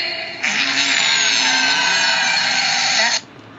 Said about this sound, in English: Nobody understood a word I said, so I'm just getting down to farting. All right? One, two, three.